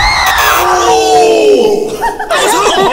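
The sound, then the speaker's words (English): A loud, high-pitched scream with wavering, falling pitch rises over a noisy crowd, mixed with yelling and laughter-like voices throughout. “Who just screamed?”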